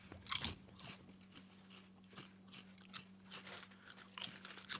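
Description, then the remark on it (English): Someone crunches loaded tots flavored kettle-cooked potato chips (cheese, bacon, sour cream and onion flavor), a loud bite opening a run of crisp, irregular chewing crunches, with a low steady hum running underneath throughout. “Our loaded tots flavored kettle-cooked potato chips blend the savory flavors of cheese, bacon, sour cream, and onions together to provide you with a bold, unforgettable snack.”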